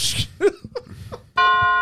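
A funeral bell sound effect: a loud, solemn bell tolls once near the end and rings on steadily, preceded by a few brief vocal sounds and some background noise.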